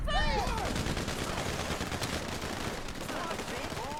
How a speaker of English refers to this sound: Let's get past the firefight. I'm sure y'all don't want to hear that.